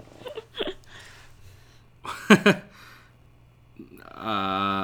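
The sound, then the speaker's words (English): A drawn-out creak of a couch shifting under weight rises near the end, following a few short breathy vocal sounds and faint background hum. “That was a couch, by the way. If you picked that up, that was not a fart.”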